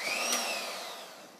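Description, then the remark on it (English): A blender runs steadily with a loud, even motor whine and whirring, a high pitched hum holding across the whole stretch with no voices over it. “Yeah, never trust a blind man with a blender.”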